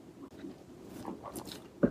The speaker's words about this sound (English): As I take a sip of wine, or two sips of wine, rather.